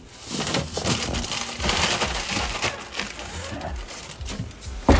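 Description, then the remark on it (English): Continuous crinkling and rustling of a plastic bag holding eggs, handled as the eggs are pulled out, a dense crackly texture lasting several seconds, with a faint murmur of voices underneath. “I'm gonna pull out the huevos. I don't know why they're still in plastic bags.”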